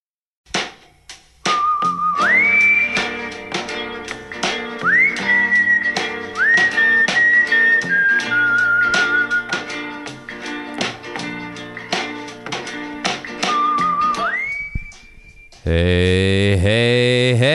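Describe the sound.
Someone whistles a sliding, sustained melody over a steady tapping beat and layered backing music, fairly loud, before the track shifts into a brighter, buzzing chord at the end.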